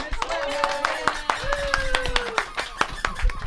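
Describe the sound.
A short round of applause for a guest's mother: several hands clapping in quick, uneven bursts throughout, with a voice calling out in sustained, gliding tones over the claps.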